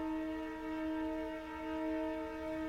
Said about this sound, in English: I don't want to just walk away, and here comes the train again.